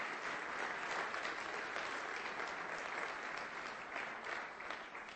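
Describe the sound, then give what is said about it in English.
An audience at City Church breaks into sustained applause as a hand clap of praise to God, a dense, steady wash of many hands clapping at once for several seconds with no speech over it. “Now let's give God one more hand clap of praise, if you will.”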